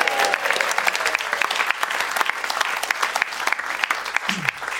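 An audience breaks into sustained, steady applause for Peter Mandelson, dense rapid clapping holding at an even loudness throughout, with a brief faint whistle-like tone near the start.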